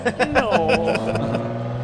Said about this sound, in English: And that car needs a muffler.